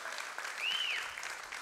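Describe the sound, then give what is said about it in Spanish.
A church audience applauds God in a morning service, a steady, dense wash of many hands clapping at an even level, with a brief high whistle-like tone arcing over the middle of the applause. “dar un aplauso a nuestro Dios en esta mañana, celebrar su grandeza, celebrar su poder, celebrar su misericordia.”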